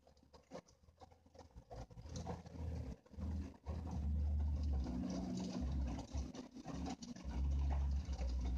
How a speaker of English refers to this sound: That's a truck driver, big old 18-wheeler passing by.